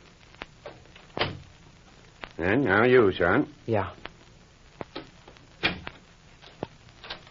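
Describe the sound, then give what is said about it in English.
A door thuds shut, followed by a scattering of sharp clicks and knocks as the door is locked with someone inside, with a short stretch of talking in between. “Hey, what do you mean by locking the door?”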